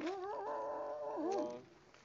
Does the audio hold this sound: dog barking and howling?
yes